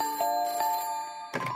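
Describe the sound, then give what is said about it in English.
Joel's telephone rings in the middle of the night on November 13th, 1974, a call from his editor, with a bright, sustained electronic tone, pulsing in short bursts before a louder clatter near the end. No one speaks. “Let's go back to the middle of the night, on November 13th, 1974, when Joel's phone rang.”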